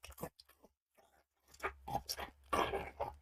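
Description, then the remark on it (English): A voice imitates loud, wet open-mouth chewing: a run of smacking, crunchy mouth noises with short pauses, growing denser and louder toward the end. “They're right behind people that chew with their mouth open.”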